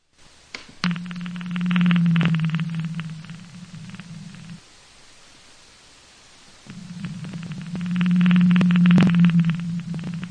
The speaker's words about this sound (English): But yeah, they have these low frequency sounds that make them almost like chatterboxes sometimes. And then they have these really beautiful songs that they've recently found too. Chris, here's an example of what a blue whale sounds like.